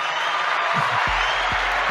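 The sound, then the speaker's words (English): A dense wash of applause from an audience welcoming a guest, steady and fairly loud for a couple of seconds, with no voices breaking through. “The crowd goes wild.”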